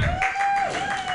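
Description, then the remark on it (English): Scattered audience clapping forms a steady, moderately loud wash of noise, with a sustained high tone running through it the whole time. No one speaks. “I appreciate the clap.”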